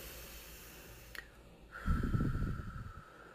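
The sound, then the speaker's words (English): A single deep, noisy breath demonstrating a breathing exercise, a heavy rush of air lasting about a second after a brief click, with no talking. “So many times I've sat with them and said, okay, let's breathe.”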